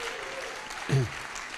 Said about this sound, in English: Wasn't that a fantastic way to hear the story again, right? Let's give him another round of applause.